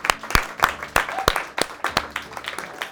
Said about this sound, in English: And a final thank you to you, our audience. Round of applause for the audience.